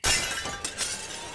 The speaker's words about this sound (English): Shin broke through the window with a garbled yell, and Tsuro stepped backwards, startled.